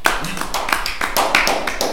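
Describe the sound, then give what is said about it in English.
A brief round of applause: steady, crisp hand claps run densely for about two seconds at an even, fairly loud level, with no voices over them. “Everybody give a round of applause for the end of tanking as it is.”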